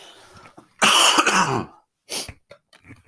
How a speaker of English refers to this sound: Sorry, I'm going to cough again.